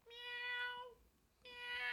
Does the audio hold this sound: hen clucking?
no